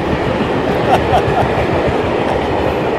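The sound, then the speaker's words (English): A big, loud, very polluting German industrial diesel train bound for Germany roars past, its heavy rumble steady throughout with faint clattering from the wagons and a few brief metallic squeaks. “That's loud, and that is a very polluting German diesel train.”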